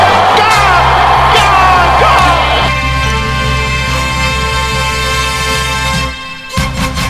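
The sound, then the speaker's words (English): A big cricket stadium crowd roars and cheers as bowler Siddle takes a hat-trick on his birthday, a loud, sustained wave of noise with scattered yells, holding for several seconds before cutting off abruptly. “Crowd cheers.”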